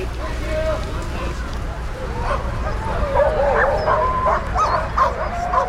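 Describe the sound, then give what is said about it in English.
A pack of sled dogs barks and yips excitedly in a steady, overlapping chorus, with high whining cries mixed in over a low rumbling outdoor background. “Of any checkpoint, there's about an hour that's just devoted to taking care of the dogs.”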